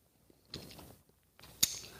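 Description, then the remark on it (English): Two soft, noisy slurps of someone sipping a stout, the second ending in a sharp click, with short quiet gaps between them and no talking. “It's called the simultaneous sip and a half a stout. Go.”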